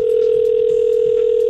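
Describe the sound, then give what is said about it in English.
A steady, unbroken telephone dial tone before a prank phone call hums at an even level for the whole moment, loud, with no voices over it. “So doesn't that sound like something that we should phone Jax?”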